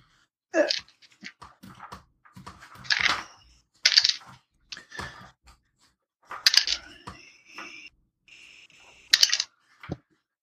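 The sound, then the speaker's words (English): Dice clatter across a hard tabletop in several short bursts of sharp clicks and rattles, moderately loud, with brief pauses between throws and no one talking, as three four-sided dice are rolled for a third-level spell. “So I can throw 3d4s.”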